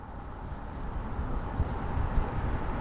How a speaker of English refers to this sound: Clayton Duncan pulls his car off a rutted road near the town of Upper Lake in Lake County.